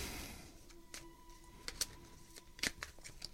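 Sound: tarot cards being shuffled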